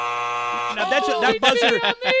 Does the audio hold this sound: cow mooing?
no